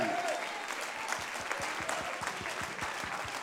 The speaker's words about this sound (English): Praise the Lord. Oh, give him a hand clap of praise.